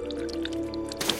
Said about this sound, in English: Did Nacho leave the water running in here? This water is almost green. It tastes like salt water?